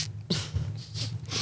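An aerosol toilet spray from a dollar store hisses out in several short, airy bursts onto the toilet water, one after another, over a steady low hum, with no talking.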